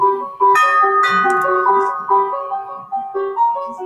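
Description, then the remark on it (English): A house doorbell, pressed by trick-or-treaters on a fall evening, rings out a bright, bell-like melody of about eight ringing notes, each tone sustaining into the next. It is loud and clear, with no voices. “They run to the house and press the doorbell.”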